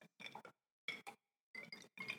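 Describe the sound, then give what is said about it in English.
A series of bright glass clinks, coming in quick pairs and short clusters with brief silences between, as glasses are touched together in a toast. “You didn't drink after you cheers.”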